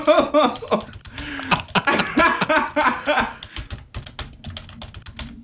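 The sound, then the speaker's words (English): Rapid, irregular clicking of someone typing on a computer keyboard to look up the Coen Brothers' filmography on Wikipedia; voices and laughter overlap the first half, then the keystrokes continue alone. “Oh no, we have to play the keyboard music now.”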